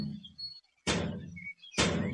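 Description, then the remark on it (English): Two heavy, booming impacts about a second apart, each a loud crash against a door with a rough, rattling decay, as a Cat Coolers cooler is rammed into the door as a battering ram to force it open. “We can definitely open the door with it.”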